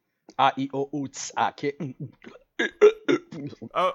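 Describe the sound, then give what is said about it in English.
A voice into the mic makes a rapid string of short, croaky burp sounds, fairly loud, in choppy bursts with a brief pause midway. “And then also the burp sounds.”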